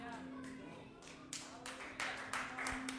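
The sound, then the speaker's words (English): Scattered, uneven clapping from an audience during a preacher's talk: a handful of sharp claps at irregular intervals, over a steady low hum and faint background murmur. About half the audience is not clapping. “That's why half of y'all ain't clapping.”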